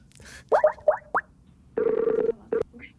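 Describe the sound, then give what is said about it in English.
A phone call connecting as someone phones a guest: a quick run of chirpy electronic tones, then a steady buzzing ring tone that sounds once long and once briefly. No one speaks. “Now let's call up Matt. We got to get him on the phone.”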